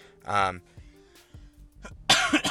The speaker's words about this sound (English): Sorry, I think I'm getting a little bit of a cold here, so I'm trying not to cough in the mic.